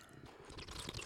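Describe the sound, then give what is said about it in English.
Close-up wet gulping and slurping of someone drinking water, a quick burst of moist mouth and swallow sounds right against the microphone, with no talking. “don't drink closer to the microphone.”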